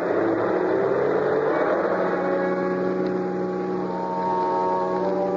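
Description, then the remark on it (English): A car engine drones loudly and steadily as the car pulls back onto the road, its pitch climbing over the first couple of seconds as it accelerates, then holding an even hum with no voices. “After I got the car back onto the road again, I felt like a fool.”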